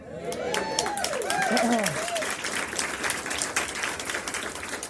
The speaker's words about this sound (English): That's pretty good, sizable applause there. That was pretty good.